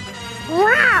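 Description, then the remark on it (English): A person's voice imitates a panther's roar, though it comes out more like a rising, drawn-out house-cat yowl, loud, lasting about half a second. “It wasn't quite a roar. It was more like the house cat that was trying to let you know the litter box.”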